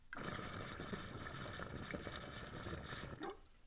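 Steady, close-up water bubbling and gurgling in a large handmade glass bubbler held near the microphone, running continuously for a few seconds, dense and churning, then cutting off abruptly near the end.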